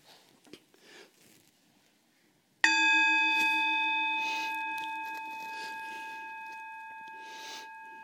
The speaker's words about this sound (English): I'm going to bang the gong and we're going to do 5 minutes like this.